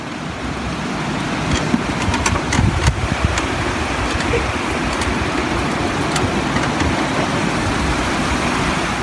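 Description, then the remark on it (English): A steady electric wheelchair motor whirs continuously as the chair drives on a paved street in Trabadello, a dense low rumble with faint rolling texture and a few brief clicks, no voices present. “You can hear the whir of the chair's electric motor.”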